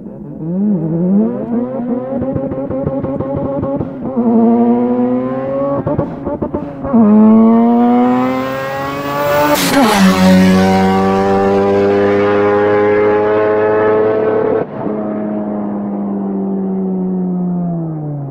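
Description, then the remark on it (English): A Mazda RX-7 rotary-engined sports car accelerates hard down a track, its loud engine note climbing and dropping back with each gear change, including third to fourth, over several shifts, with no talking. “All these microphones are recording the same performance of the car, and you'll get a chance to hear the differences between them.”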